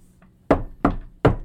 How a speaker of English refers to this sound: You guys hear just a knock on the door, and it kind of clicks open.